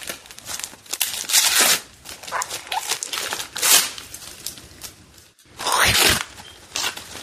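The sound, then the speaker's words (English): Loud rustling and crinkling of old-school Rudolph the Red-Nosed Reindeer gift wrapping paper being torn open, with bursts of ripping and crumpling spread across several seconds and a short pause midway. “I like this wrapping paper. That's cute.”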